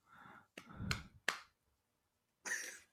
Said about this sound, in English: You said one word answers. And I did clap.